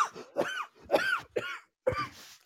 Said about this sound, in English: Sorry, I'm not laughing at you coughing. I'm just laughing at the fact that you've done a radio show whilst not sounding like you should have done a radio show.